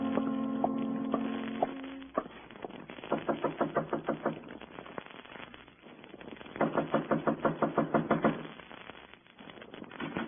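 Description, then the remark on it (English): Two bursts of rapid, evenly spaced early-morning knocking on a door, each about a dozen sharp raps, following a brief sustained tone at the start. No one speaks. “Not even an early knock around my door.”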